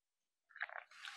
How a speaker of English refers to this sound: Excuse me, let me take a sip here.